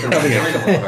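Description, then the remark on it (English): A couple of harsh coughs in quick succession, loud and breathy, with a rough, throaty edge like someone caught in a brief coughing fit. “I'm having a coughing fit.”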